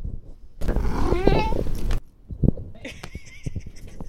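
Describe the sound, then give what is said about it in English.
A loud, rough, roar-like noise gives way to a sharp single knock as a cat whacks a soda can, followed by a few faint taps and a thin, high ringing tone. “That was cat ASMR. He whacked it.”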